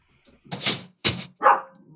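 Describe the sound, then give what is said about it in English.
A dog named Artie barks three times in quick succession, loud, the final bark slightly higher and sharper, with no one talking over it. “That would be Artie. Yeah, Artie is making an appearance.”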